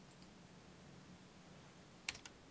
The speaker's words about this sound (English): And I hear keyboard typing.